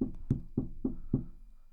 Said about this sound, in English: One day there's a knock at your door.